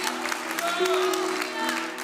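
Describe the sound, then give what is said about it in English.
An audience claps steadily as praise to the Lord for the power of the Word of God, the crowded patter of many hands holding at a fairly even loudness, with a hum of voices and faint cheering running underneath. “You're not clapping to a preacher.”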